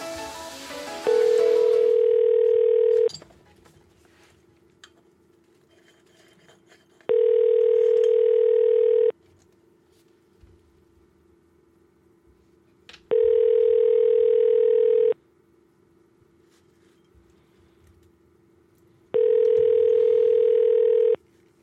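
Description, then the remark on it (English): An outgoing call rings on the line: four loud, steady, low-pitched buzzing tones, each about two seconds long, separated by roughly four-second gaps of near silence. No one speaks. “She's not even going to answer now.”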